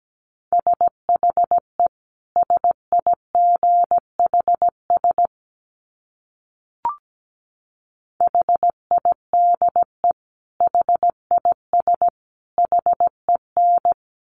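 Morse code beeps at about 17 words per minute: a steady mid-pitched tone keyed into quick dits and longer dahs, sent in groups separated by pauses, with a single click in the middle gap.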